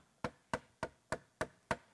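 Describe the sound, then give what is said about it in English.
Six crisp knocks on wood in a steady, evenly spaced rhythm, each sharp with a quick decay and no voices between them. “Here I am. I stand at the door and I knock.”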